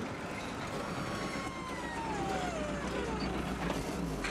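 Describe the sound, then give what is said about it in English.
A battered, beat-up car engine rumbles and rattles with a steady, noisy roar, a whining tone sliding downward midway as the car pulls into a house and slows. No one speaks. “The car's beat to fucking shit. Yeah. They pull into the house”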